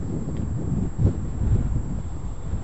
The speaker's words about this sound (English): It's too windy here, let me turn around.